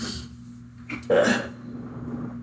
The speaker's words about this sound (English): My dog is snoring. She's so loud.